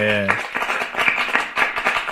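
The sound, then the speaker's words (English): A brief vocal sound gives way to a run of quick hand claps, loose and slightly uneven in rhythm, continuing for a couple of seconds. “Let's clap for how your life turned out.”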